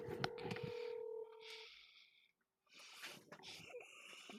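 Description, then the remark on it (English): A phone call to a friend is dialed on speakerphone: a steady two-pitched electronic tone holds for over a second, then cuts off, followed by a brief lull and some rustling, crackly noise. “Put your friend on speaker and just call him.”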